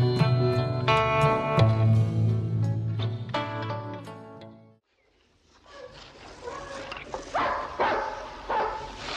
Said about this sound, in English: Hey, what the hell was that? Dogs, man, what you think? It's hunting dogs. Hunting dogs mean hunters.